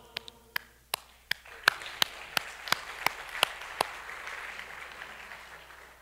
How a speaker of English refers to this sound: The applause is for you. The celebration is directed to you.